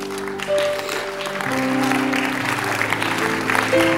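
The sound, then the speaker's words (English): A crowd claps steadily and energetically for the Lord, a dense, sustained wash of applause, with sustained musical tones, likely organ or keyboard chords, ringing underneath. “You better give the Lord a better clap of it.”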